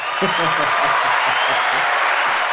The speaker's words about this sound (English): Wait, I have to give you a round of applause for that.